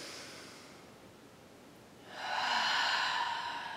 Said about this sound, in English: And right now, I just want you to focus on him breathing. We're going to be here for a handful of breaths.